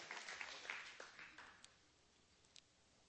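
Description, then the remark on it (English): A crowd applauds itself for its faithfulness in giving, clapping together in a dense, crackling burst that tapers off over a couple of seconds, fairly faint, with a few scattered claps near the end. “Give yourselves a hand for your faithfulness in giving.”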